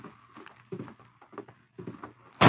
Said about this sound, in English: As Dutch swung open the door, the Lone Ranger moved fast from his position on one knee, knocking Dutch's gun arm with his left hand.